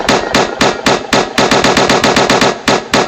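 Loud gunshot sound effects fire in a rapid, slightly uneven burst of about seventeen sharp cracks, like sustained automatic gunfire, with no voices.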